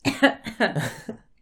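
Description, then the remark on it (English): A quick run of about five or six fairly loud coughs, each a short rough burst, tumbling one after another before trailing off into quiet. “Oh, I have to cough. I'm sorry.”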